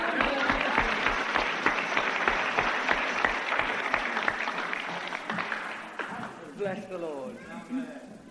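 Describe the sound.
An audience claps for a woman together in a steady, rhythmic beat, loud and full for several seconds before tapering off as a man's voice begins speaking.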